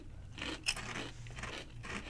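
Steady crunching of a thick, kettle-cooked barbecue potato chip, folded double, being chewed, with brittle bursts repeating every fraction of a second and one sharper snap early on, no talking.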